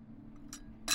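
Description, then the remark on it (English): Two short, bright clinks of china, like a teacup touching its saucer as someone takes a sip, the second clink louder than the first over a faint low hum. “She seems to let her guard down a little bit and walks over to sip from a teacup.”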